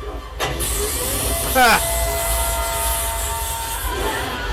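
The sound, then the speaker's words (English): A steady engine roar with a high whine drones throughout, briefly broken by a sharp knock and a quick rising-and-falling squeal near the start, as a man is thrown into the engine. “I figured he was gonna get thrown into the fucking engine.”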